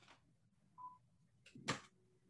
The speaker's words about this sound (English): I'm going to hang up on this wholesaler. One second.